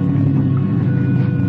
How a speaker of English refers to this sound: The boat is coming in at us now.